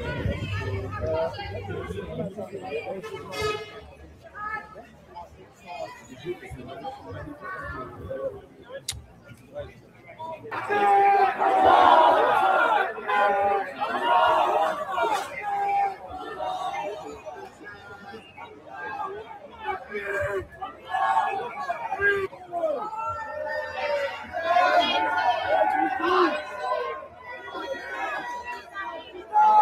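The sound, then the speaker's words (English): A large crowd of protesters in London, England, murmurs and chatters continuously, with overlapping voices swelling louder partway through into a dense roar of shouting before easing and rising again. “Huge crowds of protesters in London, England.”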